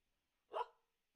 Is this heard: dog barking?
yes